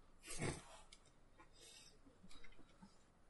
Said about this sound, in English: Who's breathing? Do you hear that? Yeah, I hear that.